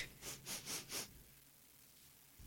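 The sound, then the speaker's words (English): Four quick, breathy sniffs in a rapid row as someone sniffs a vine, soft, followed by quiet hush with no talking. “I guess sniffs a vine.”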